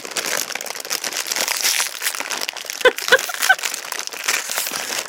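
Continuous crinkling of a Skittles candy wrapper with a few sharp clinks of the hard Skittles candies around the middle, a busy, scratchy rustle throughout with no voices.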